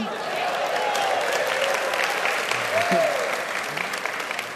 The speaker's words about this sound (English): Man, oh mom, someone clapped for my singing. Never thought that would happen.